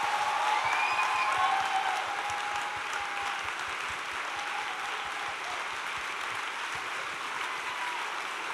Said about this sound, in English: So would you please join me in applauding everyone who took part?